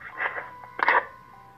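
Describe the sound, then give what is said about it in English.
The speaker's mobile phone sounds a short electronic alert during a church sermon, two bright chiming bursts with a faint steady tone lingering underneath, moderately loud, with no talking. “So I have a problem with my phone.”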